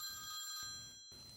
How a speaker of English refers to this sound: I left the phone to ring and ring, knowing that you needed me.